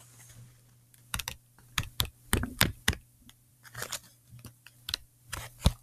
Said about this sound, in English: Is it a keyboard? Nope. A calculator. Good guess, though.